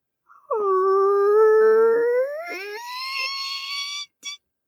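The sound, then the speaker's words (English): A voice imitates a creaky door opening: one long, wavering, nasal whine that slowly rises in pitch for several seconds, then cuts off with a short squeak. “It's a creaky, creepy door because this is like our murder Halloween episode, obviously.”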